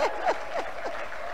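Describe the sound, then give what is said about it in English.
An audience claps in a steady, dense patter that holds at an even level throughout, with a few brief higher sounds rising above the applause and no one speaking. “Oh, I thought you clap so that they'll know that you are here, you have missed them.”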